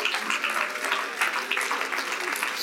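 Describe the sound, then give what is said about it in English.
An audience claps their hands unto the Lord in church, a dense, steady patter of many hands filling the whole clip at a fairly strong level, with a few voices murmuring faintly underneath. “Oh, would somebody clap your hands unto the Lord in this house.”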